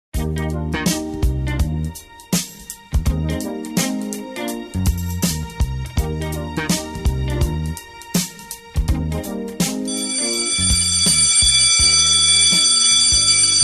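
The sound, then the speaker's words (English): A bright, bouncy chiming melody plays for several seconds, then gives way to a loud, continuous bell ringing that sustains steadily to the end, the bell signaling it is time to wrap up The Pet Buzz show. No voices are heard. “That's the bell, signifying it's time to wrap the show.”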